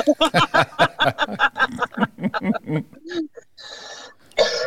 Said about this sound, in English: God, now I'm coughing because I choked on my water. They're going to think I have COVID.